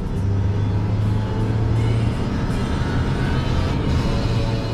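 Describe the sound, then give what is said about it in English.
Heavy trucks loaded with orange palm fruits rumble past on a road on the Indonesian island of Sumatra before sunrise, a steady, loud low engine drone with a humming undertone and continuous road noise, no voices. “To see what drives the Indonesian economy, just get out on the road. Even before sunrise, you see truck after truck loaded with orange palm fruits.”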